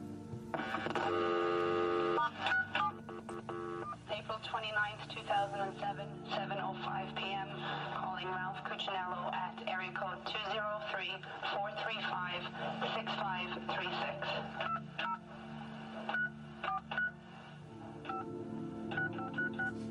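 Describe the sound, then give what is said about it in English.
Touch-tone telephone dialing beeps, a rapid series of short electronic tones in an irregular rhythm, heard clearly over a low hum, with a longer steady tone at the start, as a call to Ralph is dialed and recorded. “She called Ralph up and she decided to record it.”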